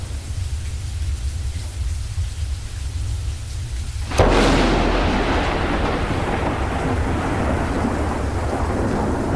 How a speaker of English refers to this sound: Thunder and lightning. Enter three witches.